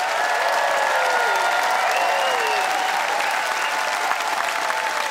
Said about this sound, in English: Let's see what the audience has decided by applause.